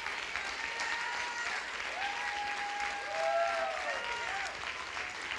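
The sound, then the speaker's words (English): An audience claps steadily, a dense continuous wash of many hands, with a few sustained voiced tones or cheers rising and falling over the applause. “Come on and clap, clap, clap.”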